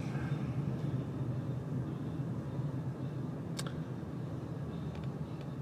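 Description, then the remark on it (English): Steady low road rumble from inside a moving car, constant and fairly loud, with a single brief click partway through and no one talking, while a black spray-painted Dodge Ram 4x4 pickup truck tailgates behind. “Get off my butt, you Dodge Ram. You jerk. Your truck is spray painted black.”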